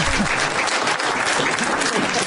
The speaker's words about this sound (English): Don't you love these spirited debates? Give them a round of applause, everybody.